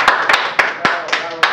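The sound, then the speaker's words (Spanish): A short burst of hand clapping, about six sharp claps in a loose rhythm, with voices chattering underneath throughout. “Un aplauso, por favor.”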